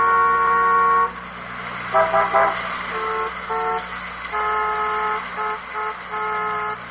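Several car horns honk repeatedly in overlapping bursts, a long blast followed by shorter irregular toots, loud with steady traffic rumble underneath.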